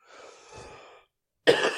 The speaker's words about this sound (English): Excuse me for coughing. I'm not going to edit it out because it matches with the video. And I'm not editing, chopping up the video. I have a really bad cough.